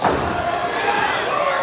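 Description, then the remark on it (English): Heavy thudding stomps from a wrestler stomping on his opponent land on a wrestling ring mat, loud, set against a constant roar of an arena crowd. “Stomping away.”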